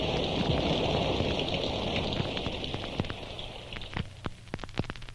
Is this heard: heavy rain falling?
yes